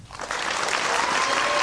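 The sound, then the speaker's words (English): An audience claps steadily, a dense wash of many hands that swells quickly and holds at a fairly loud, even level for the whole stretch, with a faint tonal hum riding underneath. “Let's just start with a round of applause.”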